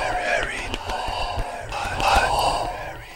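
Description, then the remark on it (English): A short isolated piece of vocals played backwards: breathy, whisper-like syllables swelling and fading in reverse over a low, steady backing, with smeared vowel tones and no intelligible words. “But I took the time here to isolate a piece and reverse it.”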